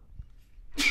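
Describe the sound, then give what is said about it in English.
A single sharp sneeze bursts out near the end after a brief quiet lull, a breathy, hissing blast that cuts off abruptly. “Bless you.”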